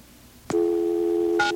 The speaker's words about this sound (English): This is the one that was busy before, right? Mm-hmm. Well, it's ringing now.